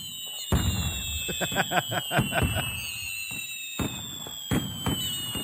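Fireworks bang in a rapid crackling cluster, followed by a few more spaced booming blasts, with high whistling streaks riding above the explosions throughout.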